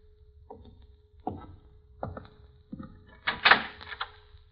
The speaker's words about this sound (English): There's one in the next room. That door behind you. Open the door, Vince.